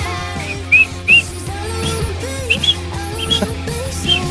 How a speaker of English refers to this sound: Love the sound of that whistle. Thank you. Keep it going.